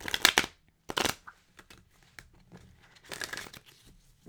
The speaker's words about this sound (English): I'm going to shuffle one more time.